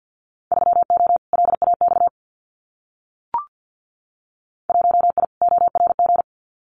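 Rapid Morse code at about 50 words per minute sending Winter Field Day contest exchanges, sharp beeps on one steady mid-high tone in two quick bursts, a short pause with a faint click, then two more bursts.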